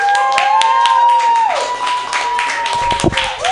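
An audience claps and cheers loudly and steadily for a few seconds, a dense wash of applause with whoops, while a sustained tone glides beneath it.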